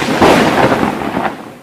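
A loud crash of thunder from a very heavy lightning storm after midnight bursts out with a crackling, rumbling roar that holds for a moment and then tapers off, with no voices present.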